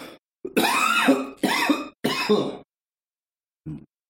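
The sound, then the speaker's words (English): Three loud, harsh coughing bursts come in quick succession, followed after a short pause by a brief, dull low thud, like something dropping onto the floor. “I heard something like hit the floor when you did that, and I thought you coughed and puked at the same time.”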